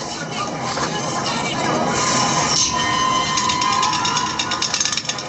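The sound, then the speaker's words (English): A runaway subway car rumbles loudly along the tracks in a tunnel, a dense, roaring clatter that swells slightly as it approaches, with brief metallic squeals and rattling over the steady noise. “There's a runaway subway car.”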